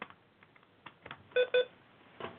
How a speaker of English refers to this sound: Jesus Christ, the fucking beeping. Shut the fuck up, please.